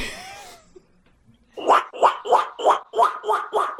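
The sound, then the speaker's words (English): A person imitates a duck, letting out a quick run of about eight loud, raspy, nasal quacks in a steady rhythm, following a brief moment of quiet. “No, I can speak duck.”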